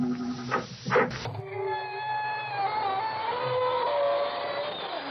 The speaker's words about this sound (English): welcome you through the creaking door into the inner sanctum